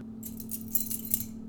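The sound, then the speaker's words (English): Keys being shaken as a makeshift buzzer during a football quarterback trivia quiz: a bright, rapid metallic jingling with a few sharper clinks, sustained for over a second over a low steady hum, moderately loud. “Shake your keys, yo.”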